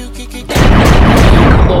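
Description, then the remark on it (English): A low rumble gives way to a sudden, loud burst of gunfire sound effects that keeps roaring on in a dense, sustained blast of booming shots. “They said the gunshots was too much.”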